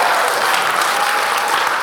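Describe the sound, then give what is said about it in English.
A crowd bursts into dense, steady applause with cheering and screaming mixed in, a loud, continuous wash of clapping and excited voices filling the whole moment without a break. “Can we hear a good, like, cheer and clap and scream and yeah?”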